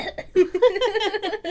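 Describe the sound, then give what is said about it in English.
A voice imitates an old bus ticket machine: a few short, choppy bursts, then a sustained, rattling mechanical whirr, fairly loud. “But my cough sounded like the bus ticket machines. You know, the old ones where they're like”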